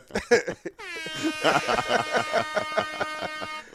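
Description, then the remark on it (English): A loud, blaring air horn sound effect played live on Epsilon Radio kicks in after a brief bit of talking and holds steadily for several seconds, with voices continuing underneath. “Give me some air horns.”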